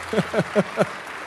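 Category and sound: crowd, golf clap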